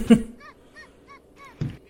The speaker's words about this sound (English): Mm, like that bird. Well, hi, birdie.